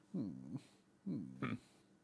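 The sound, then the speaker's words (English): A sleepy female dog lets out two low, drawn-out grunts about a second apart, each rising at the end with a slight whine, with no talking over them. “Oh, sleepy dog. Oh, she just keeps grunting.”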